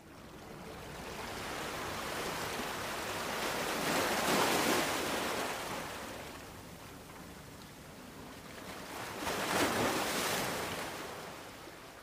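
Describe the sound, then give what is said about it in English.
Water laps at a boat dock as a boat finally docks, in two slow, rushing swells, one building around the middle and another near the end, with a steady wash of surf between and no voices. “Kenji Bushida's boat had finally docked.”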